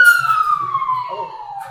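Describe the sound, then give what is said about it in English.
A police car siren sounds loud and steady, its pitch sliding downward as the vehicle passes by, with low, muffled background noise underneath. “Sorry, there's a police car just went by.”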